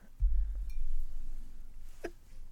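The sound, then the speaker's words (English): A little beer pouring from a bottle into a glass: a low, gurgling rumble that runs for about a second and a half, followed by a single short glassy clink near the end. “I'm gonna pour it in a glass. I'm just going to pour a little bit. Wow, you hear that?”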